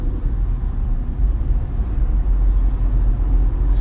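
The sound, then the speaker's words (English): Steady low rumble of a car driving along a road past a wreck, a constant engine and tire drone filling the space without breaks, heard from inside the vehicle with no clear voices. “So, and of course, I'm driving past.”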